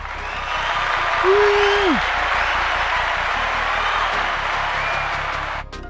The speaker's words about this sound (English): I'll add in some cheering.